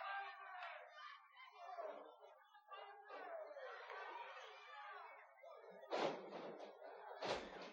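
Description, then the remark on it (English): A professional wrestler going for a crossbody is caught in midair and power slammed onto the wrestling mat with a loud thud near six seconds, followed by another impact, over steady crowd chatter and cheering. “Sawyer power slammed him in midair and a crossbody”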